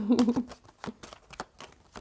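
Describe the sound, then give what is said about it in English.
A small stack of tarot cards being shuffled during a tarot reading, heard as a string of soft, papery bursts and flicks repeating unevenly, with a brief murmured vocal sound at the start. “Let me like shuffle this little pile I got here.”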